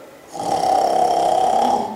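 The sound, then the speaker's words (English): A single long, loud snore performed by a human voice imitating the god Vishnu snoring, a rasping, buzzy drone held steadily for over a second, with no other sounds. “Vishnu was snoring very loudly.”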